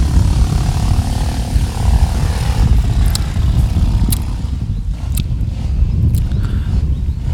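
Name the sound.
motorbike engine revving outside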